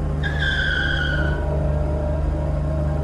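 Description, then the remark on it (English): A car's tires screech in a loud, high skid lasting about a second after another car driving beside it clips it, over a steady, heavy engine rumble that keeps droning on after the squeal fades. “One car driving beside us clipped us.”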